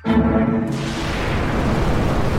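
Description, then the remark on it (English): A rocket launch: a brief low hum gives way to a loud, sustained, rumbling roar of ignition and liftoff that fills the whole clip without letting up. “We have liftoff.”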